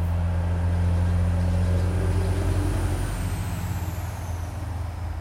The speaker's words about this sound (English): I used to sit in traffic. Now I listen to it roll past while I do a podcast.